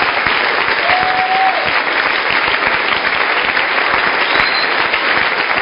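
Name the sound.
audience hand clapping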